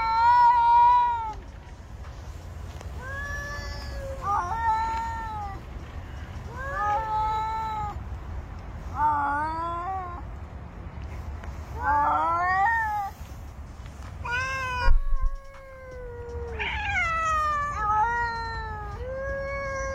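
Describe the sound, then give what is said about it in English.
Cats in a video meow and caterwaul in a steady series of drawn-out, wavering cries, roughly one every two seconds, fairly loud over a low background rumble, with no talking. “No, I want to go back to the cats, not the cop video.”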